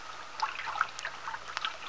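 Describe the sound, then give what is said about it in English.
A small brook at the foot of a little hill in a garden trickles and babbles steadily, with bright bubbling and gurgling notes over a constant soft rush of flowing water. No voices. “Now the two young people have parked the car in the driveway which slopes up to the house, have walked down through the garden to the little brook which rambles along at the foot of a little hill and back.”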